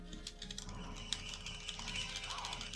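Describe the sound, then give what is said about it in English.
A balloon pump mechanism clicks and ratchets steadily as it inflates a balloon during a game, a continuous run of rapid mechanical ticks with no one speaking. “We're inflating the balloon so if it pops on you.”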